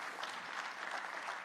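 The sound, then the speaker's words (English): An audience clapping after the words "Jesus is the answer" in a sermon, a steady, dense patter of many hands, fairly soft and even throughout, with no voices over it. “Oh, I thought you would clap a little bit more on that.”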